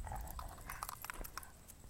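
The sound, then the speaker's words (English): A person carrying a light walks up with their dog, the next-door neighbour's dog, with quick irregular clicking footsteps over a steady low outdoor rumble. No one speaks. “And someone's walking up with a light, with their dog.”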